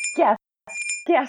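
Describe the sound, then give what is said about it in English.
Sustained, shimmering high chime tones ring steadily through the short clip, with bursts of a voice making sounds around them, briefly dropping to silence in the middle. “Stop, fairy bell.”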